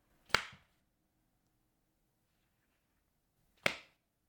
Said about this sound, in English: How about slapping those thighs? That makes a nice sound.